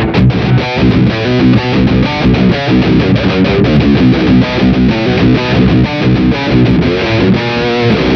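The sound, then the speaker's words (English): A heavily distorted electric guitar, down-tuned to B, chugs through a riff, returning again and again to a low pedal note between higher stabs, loud with no talking. “again, I'm down-tuned to B. So. And a lot of distortion has to be applied.”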